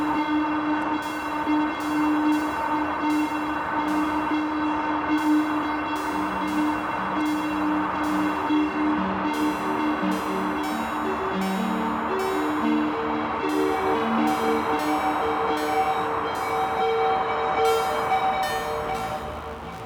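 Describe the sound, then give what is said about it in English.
A simple modular synthesizer system of about four modules plays a generative sequence of low stepping notes over a steady, bright, bell-like drone, smeared with heavy reverb from a Desmodus Versio reverb processor. The sound stays at an even level for the whole clip, with no voices. “This is a pretty simple modular system. We're just using about four modules right now.”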